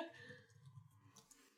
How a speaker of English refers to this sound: Don't mind the typing sounds.